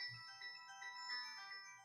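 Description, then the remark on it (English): A mobile phone rings with a bright, electronic melodic ringtone, a looping tune of high sustained notes playing on its own without any talking. “I forgot my phone. Good old phone. Sorry about that. I thought I turned it off.”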